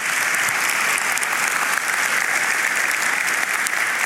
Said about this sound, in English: Once again, can we give them a round of applause this morning if we can?